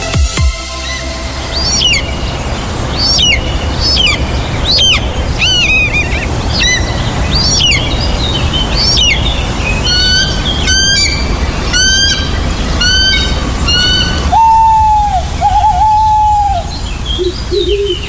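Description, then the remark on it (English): Birds of prey at York Bird of Prey Centre, Burn Hall, just off the A19, call and squawk repeatedly in harsh, rising shrieks over a steady background rumble, with a few longer wavering cries near the end; no one speaks. “To experience sounds like these, book a great family day out to York Bird of Prey Centre.”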